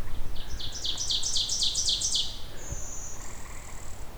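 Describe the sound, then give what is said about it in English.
A blue-winged warbler's thin, buzzy song: a drawn-out high insect-like buzz, preceded by a rapid run of sharp, pulsing high notes, heard clearly over a faint outdoor background. “Here is our blue winged warbler doing its bee buzz song.”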